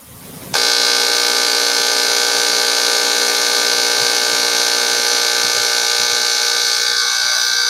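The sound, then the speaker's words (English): A spiker box used with a cockroach prep is switched on, picking up electrostatic interference from a laptop on a wall outlet, a soldering iron and fluorescent lights: a loud, steady electrical buzz starts abruptly after a brief quiet moment and holds constant, a dense harmonic hum stacked from low to high pitch with no talking over it. “All that is measuring is electrostatic interference in the air.”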